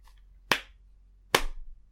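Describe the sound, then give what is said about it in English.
Two sharp hand claps a little under a second apart, each a crisp single smack as several people clap together in sync, with quiet background between them and no talking. “I love the fact that we stopped clapping it in synchronous.”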